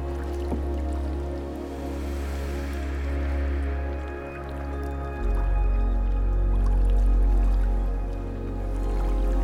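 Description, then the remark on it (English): Water gently laps and drips in a soft, continuous wash, with a low steady rumble underneath that swells slightly about halfway through. No one speaks. “And its sounds relax you deeply.”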